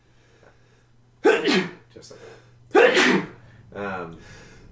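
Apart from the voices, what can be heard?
loud sneeze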